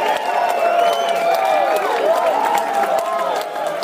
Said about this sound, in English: Hey, Steve, can we get a stadium full of cheering fans?